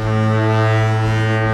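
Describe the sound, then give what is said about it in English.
A deep, steady foghorn blast sounds across the water of the bay in San Francisco, a loud sustained low tone rich in harmonics, with faint wind noise underneath and no voices. “The foghorns of the bay, connecting us all to the sea and to the currents of human and economic movements around this world.”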